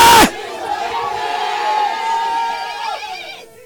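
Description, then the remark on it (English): A crowd erupts in loud, sustained screaming and cheering after a sharp burst, many high voices blending into a roaring wall of sound that holds steady for about three seconds before fading. “Scream on that mommy, see, I begin to make it.”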